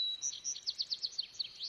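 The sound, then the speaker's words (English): A small bird chirps in a quick, steady series of high, bright notes, about eight or nine calls in under two seconds, clear against a quiet background. “You know, I think the bird is saying it's okay to feel all those things.”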